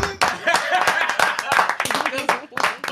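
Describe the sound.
A few people clap quickly and unevenly for about three seconds, the sharp claps overlapping with voices talking and laughing underneath.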